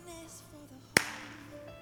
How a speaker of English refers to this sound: Yeah, so you want me to clap?